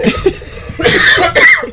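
A woman coughs close to the microphone, two harsh, raspy bursts around a second apart, loud and breathy, preceded by a brief muffled throaty sound.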